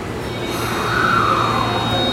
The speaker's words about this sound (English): I am currently at Otemachi Station, which is one of Tokyo's largest train stations, as well as one of the busiest in metropolitan Tokyo.